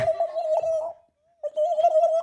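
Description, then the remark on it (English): A person imitates a turkey gobble with two warbling, trilled bursts separated by a short pause. The voice is steady in pitch. “Is that turkey?”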